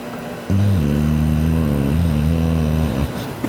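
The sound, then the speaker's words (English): A long, loud burp after eating Chipotle, a deep guttural rumble that holds for about two seconds with a slightly wavering pitch before cutting off, with no talking over it. “I burped again. Sorry. I just ate Chipotle.”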